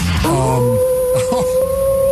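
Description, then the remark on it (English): A wolf howl sound effect played as a shout-out to the Auction Community Fire Department, Station 561: one long, sustained, high-pitched wail that rises at the start and then holds a steady tone, heard alone with no talking. “Give them the wolf howl, as a matter.”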